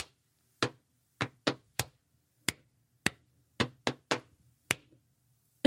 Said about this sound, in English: Listen to the sounds that you can make as you jump, or clap, or pat your knee. Can you make a pattern? I like to make a pattern a little like this.